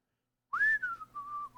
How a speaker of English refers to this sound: That's me whistling past the graveyard.